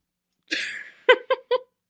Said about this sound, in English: Y'all, we got these cases of Topo Chico. In mine, I've had two sips and I've got the hiccups now. This is the Twist of Lime Topo Chico.